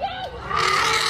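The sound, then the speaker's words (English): A charging elephant lets out a short wavering tonal call that bursts into a loud, harsh, raspy trumpeting blare, sustained for about a second. “That's the elephant.”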